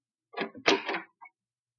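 A door is opened: a short rattle and a heavier clunk of the latch and hinge, then a small faint click a moment later. No one speaks.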